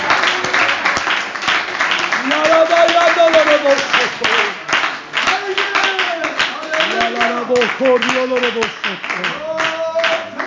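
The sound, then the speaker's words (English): A church audience claps steadily and loudly throughout in worship, a dense crackle of many hands, while voices sing and call out in rising, wavering tones over the clapping. “Oh, let's clap our hands and worship the Lord today.”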